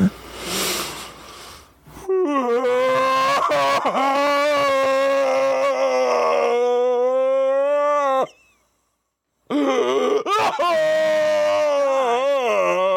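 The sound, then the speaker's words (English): A human voice imitates a cryptid's guttural howling and moaning cry: a breathy rush, then a long, wavering, strained wail, a brief silence, and a second shaky, sobbing howl. “Howling, crying, moaning. But make it guttural.”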